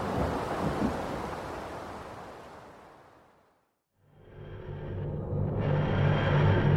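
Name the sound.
thunder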